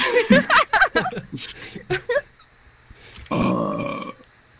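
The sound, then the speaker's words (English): Short voiced bursts, like chuckling or grunting, lead into a brief pause, then one loud, drawn-out burp rumbles for nearly a second. “Burp again.”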